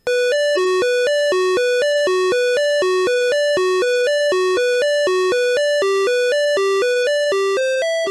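Buzzy square-wave beeps from a PC speaker, the EGA PC speaker version of a game's musical tones, rapidly alternating between a higher and lower note in a steady, even-volume melody that climbs slightly at the end, with no voices.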